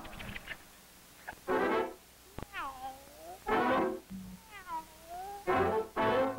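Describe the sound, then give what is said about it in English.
A cat meows, two long wavering, whiny meows separated by harsh breathy bursts of noise, with a few short clicks early on. “Panicky, what is the cat doing here that's the problem?”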